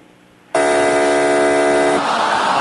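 A loud, harsh game-show wrong-answer buzzer, called Beulah the buzzer, blares suddenly after a brief quiet moment, holding a steady rasping tone for about a second and a half before fading into a noisy wash.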